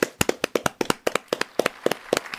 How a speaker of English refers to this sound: And yeah, then Christine finishes her big solo, and the audience claps, gives a standing ovation.